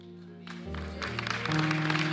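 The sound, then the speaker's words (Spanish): An audience breaks into applause for Jesus that swells and grows steadily louder, the dense clapping spread over sustained keyboard chords that shift pitch a few times underneath. “Y si es un aplauso para Jesús, un aplauso para Él.”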